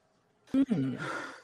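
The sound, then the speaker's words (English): A single sneeze: a short voiced intake that breaks into a loud, breathy, hissing burst, lasting about a second on its own with no talking around it. “Pardon me. Bless you.”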